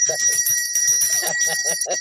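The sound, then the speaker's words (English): A bell rings with a bright, sustained metallic tone that carries steadily throughout, while a voice talks underneath it in short, rhythmic bursts. “Wait a minute. Where my bell?”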